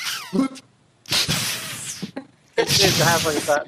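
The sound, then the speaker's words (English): A voice imitates the fizzy, hissy sound of audio run through a Roland NS50 noise suppressor on a noisy Behringer desk, in three bursts, each cut off abruptly into silence, mixing breathy sibilant noise with voiced, warbling tones. “It did have that slightly fizzy quality to it, yeah.”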